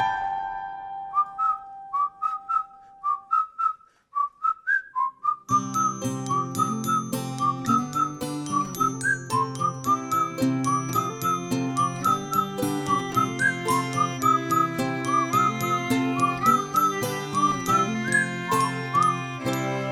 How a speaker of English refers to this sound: I'm Pastor Bob, and I always wanted to be able to whistle like that. Not a good whistler.